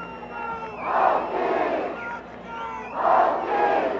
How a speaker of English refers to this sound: Vontech crowd trying to rally their pitcher who's going to stay in, it looks like.